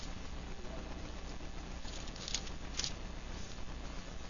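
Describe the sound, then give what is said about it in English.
Soft, steady rustling of Bible pages being turned to Matthew 7 during a sermon, a papery patter with a couple of brief crisper flicks partway through, fairly quiet and with no one speaking. “I love to hear pages turning in the Bible.”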